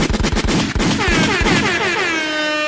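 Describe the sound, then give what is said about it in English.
A gunshot sound effect: a rapid volley of sharp gunshot blasts rattles off loudly, then gives way to a sustained, blaring horn-like tone that holds steady until the end. “I'll give her the shot to sound effect because she's Jamaican.”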